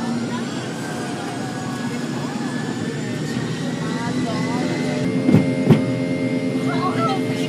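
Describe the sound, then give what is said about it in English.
A steady, loud jet engine roar fills an airplane cabin as it takes off, with a humming whine throughout, two sharp thumps near the end and faint voices murmuring underneath. “So hopefully safety is the number one thing, and hopefully the plane doesn't crash. Here we go.”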